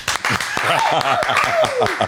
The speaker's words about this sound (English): Studio applause.